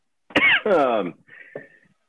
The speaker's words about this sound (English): Why are you coughing? You better not have COVID.